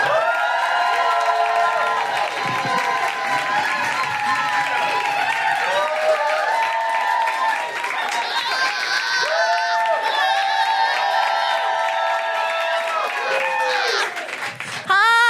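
An audience at 21 Soho claps and cheers loudly and steadily as the host of the evening is welcomed to the stage at the Fuck It Up Comedy Club (Femmes of Color Comedy Club), with whoops and shouting voices mixed into the dense, sustained applause that continues without a break.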